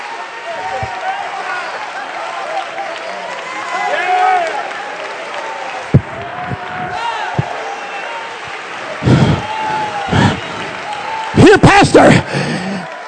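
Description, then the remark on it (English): A crowd claps steadily while many voices shout and cheer over the noise, building into louder bursts of applause and whooping near the end, clapping and shouting in praise of Jesus as the King of Glory. “If the House of Chambers can clap all the way down every president entry, I think we can clap and shout because the King of Glory has come in.”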